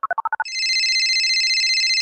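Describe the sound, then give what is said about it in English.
A quick run of six electronic beeps, like digits being dialed, followed by a steady warbling telephone ring that sounds loud with no one talking. “You guys, it's time to phone a friend.”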